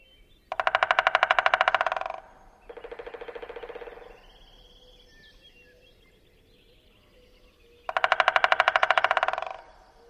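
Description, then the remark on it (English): Three bursts of rapid American three-toed woodpecker drumming, each a fast machine-gun roll lasting under two seconds. The second roll is softer, then a long pause comes before a final loud roll that tapers off. “The American three-toed woodpecker drum also fades toward the end, giving the overall impression of a ball dropping.”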